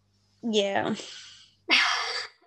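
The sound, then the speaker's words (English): Two loud sneezes in quick succession from a person who keeps sneezing despite trying to hold it in, the first opening with a voiced, breathy build-up before a sharp burst, the second a hissy blast right after a short pause. “I keep sneezing and I've been trying to hold it in, but it just keeps happening.”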